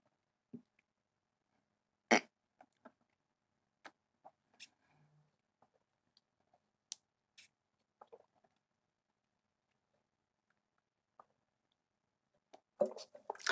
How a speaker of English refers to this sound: And what I'm going to do is I'm going to try to use it for this obviously dirty glass of water. I have to take a few sips first.